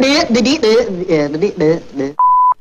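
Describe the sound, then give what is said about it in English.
A man talks briskly for about two seconds, then a single steady, high-pitched censor bleep cuts in alone, loud and clean, lasting about a third of a second. “Beep.”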